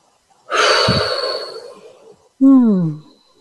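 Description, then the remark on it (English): A single yawn during a session: a long, breathy open-mouthed inhale followed by a short voiced exhale that slides downward in pitch, then quiet. “For all the listeners out there, this is a pretty normal thing to happen in a session, a lot of yawning.”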